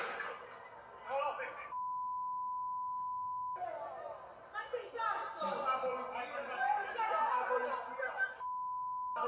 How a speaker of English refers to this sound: Wait, are they bleeping out because everyone's saying, like, fucking Italian? Yeah. Interesting.